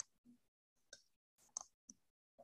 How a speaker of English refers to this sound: So get your pen and paper out and I'm going to sip my very cold, dirty chai. One moment.